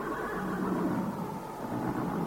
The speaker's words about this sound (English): Do you hear them, priest? The horses. They know that something is wrong. It's the storm. Never like a cold storm, horses don't.